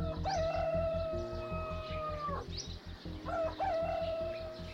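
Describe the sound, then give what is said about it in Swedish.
Village ambience in a small village in northern Nepal where hens roam free: a rooster crows loudly twice, each call long and falling off at the end, over a steady low rhythmic thumping in the background. “Hönsen går lösa och några kor står och tuggar bland buskarna.”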